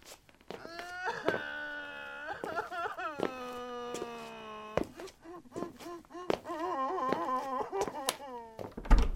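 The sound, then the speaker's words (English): A hungry newborn baby boy cries loudly and persistently, a string of drawn-out wails with wavering pitch, broken by short gasping pauses and choppy sobs, with nothing else alongside. “What's all that racket? Oh, my baby's hungry.”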